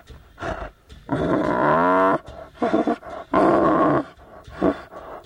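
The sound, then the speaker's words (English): A 2-year-old male tiger, rescued by Thai border police and kept at a Buddhist temple in Thailand, snarls and roars in a series of loud, throaty bursts, with long rumbling growls between shorter snarls and no one speaking. “This 2-year-old male tiger, Paiyo, was rescued by Thai border police a year and a half ago.”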